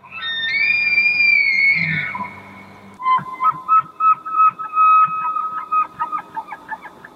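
An elk bugling call: a loud, drawn-out high whistling squeal, then a rapid series of throaty grunting chuckles that pulse several times, with no talking.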